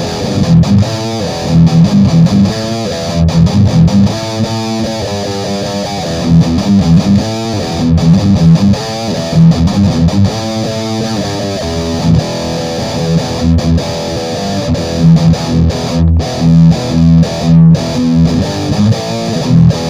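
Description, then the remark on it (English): Electric guitar played through heavy distortion, loud and continuous, with a mix of rhythmic chugging notes and ringing sustained chords, and no voices. “Okay, all that, so I'm playing with the guitar here and having fun and everything,”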